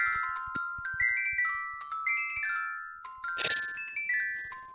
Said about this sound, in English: That's actually the ringing of the bells that … does.